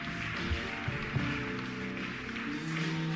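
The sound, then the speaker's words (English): An audience, including people upstairs, claps steadily for people coming forward to Jesus, a dense wash of many hands throughout, with low sustained musical tones beneath the applause. “Why don't you clap for them as they come to Jesus? Clap for them from upstairs.”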